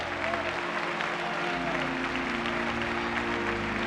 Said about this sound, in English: Oh, come on. Give the Lord a clap.